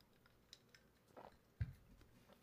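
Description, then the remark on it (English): Quiet mouth sounds of a man with a mustache sipping water, with a soft slurp followed by a single low, heavier gulp about halfway through; no talking. “A lot of water in the mustache today on the old sip from the water.”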